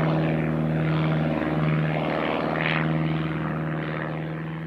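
Propeller airplanes drone steadily overhead, a loud, continuous engine hum with a buzzing harmonic tone that fades slightly toward the end as they pass.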